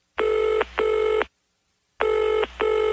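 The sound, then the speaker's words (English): A telephone ringing tone sounds in clear double bursts: two short buzzy rings, a brief silence, then two more. It's steady and fairly loud, with no voices, as a call is placed to a listener. “So what we did is we just called that listener up.”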